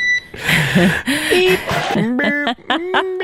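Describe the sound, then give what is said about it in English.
A thin, high electronic tone chirps through a crackly radio channel, like a smoke alarm's low-battery beep, mixed with garbled, muffled voices over the transmission. “It almost sounds like somebody needs to replace the batteries and the smoke detector.”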